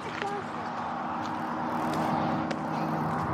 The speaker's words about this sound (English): Hang on, careful, because cars are coming real fast.